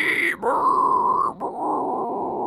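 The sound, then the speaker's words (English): A person imitates inhaled grindcore vocals: two or three harsh, rasping, sustained grunts drawn in on the breath, loud, with brief gaps between them. “And, yeah, they did breathing in vocals with these breeze, and that's what everybody knows.”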